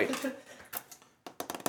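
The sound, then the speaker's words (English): Quick, crisp clicks come in uneven bursts, like fingers tapping on a keyboard, with a pause in the middle before a faster flurry of taps at the end. “And you hear some typing.”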